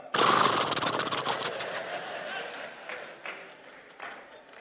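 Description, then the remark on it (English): Galloping horse hooves imitated with a quick, rattling flurry of taps, loud for about a second and a half before thinning into a few softer, scattered beats. “We could make the sound of the galloping hooves.”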